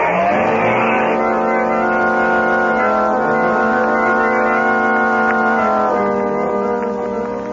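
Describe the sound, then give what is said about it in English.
The Blue Beetle's fast motor car roars loudly and steadily, its engine pitch shifting as it accelerates and speeds off, with no voices present. “In his fast motor car sped the Blue Beetle, leaving the commissioner's daughter on guard over Bugs McGarty and his band of criminals.”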